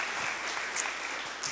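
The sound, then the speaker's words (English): A church audience applauds its own generosity in paying off the church property, steadily, a dense wash of many hands clapping at once with sharp claps popping out of the texture, sustained at an even level throughout. “And so I just applaud the generosity of this church.”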